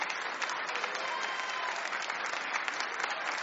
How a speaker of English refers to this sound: If God be for me, if God be for me, who can be against me? Give the Lord a hand clap of praise in the house of God.